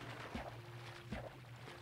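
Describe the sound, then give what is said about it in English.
A video game boat being placed and rowed: two soft, splashy paddle strokes spaced under a second apart, over a steady low hum, fairly quiet and with no talking. “Actually, let's use a boat since we got it.”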